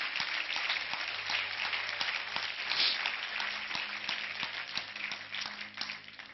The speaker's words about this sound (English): Give the Lord a good hand clap of praise today.